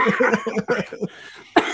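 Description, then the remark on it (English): A short run of rhythmic, breathy vocal bursts, then a pause and one sharp cough that cuts off abruptly. “Don't make me start coughing.”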